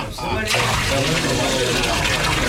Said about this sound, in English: I have had water brought forth in barrels, which shall now be poured over the bullock and the wood. Pour four more barrels of water over the bullock, the wood, and the altar.